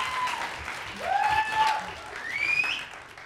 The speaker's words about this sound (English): He was begging people to clap. Well, I'm saying clap. Thank you. Thank you. Please clap.